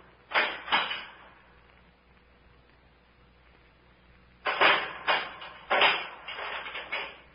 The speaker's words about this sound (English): What is it? Someone put something inside the door and closed it again.